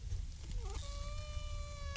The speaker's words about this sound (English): You're drinking coffee out of a cup. A plastic cup. And it's making a weird brass band noise.